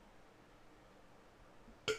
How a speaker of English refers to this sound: Hold on, I gotta burp. Hold on.